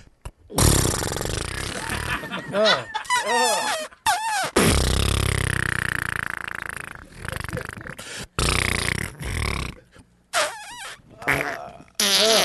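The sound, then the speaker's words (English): A person loudly imitates a man's fart with their mouth, producing a series of buzzy, sputtering raspberries, including one long drawn-out blast, separated by brief pauses. “That's one fart out of his asshole. It's like a broken trumpet.”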